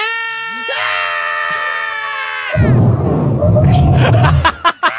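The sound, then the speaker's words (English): A person voices a character's long, strained, high-pitched scream of rage during a game, then a second voice, another character, takes over with a harsh, raspy roaring yell that sputters out at the end. “So he's just going to scream with rage. And then I think Havana starts screaming also because he's not sure what's happening.”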